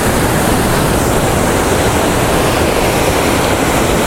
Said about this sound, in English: So there is a waterfall, but it's very small. This isn't the one I'm going to.